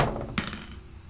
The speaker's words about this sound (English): So I am rolling Dispel Dice Black Emerald from their Premier Collection. I got a 15 on die for a total of 22.